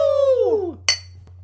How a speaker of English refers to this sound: All right, why don't we end this madness and clink our beers and sign off.